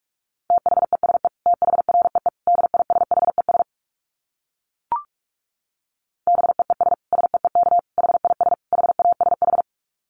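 Rapid Morse code at 45 words per minute: a steady mid-pitched tone keyed into quick dits and dahs, in two long runs separated by a pause with a single short click.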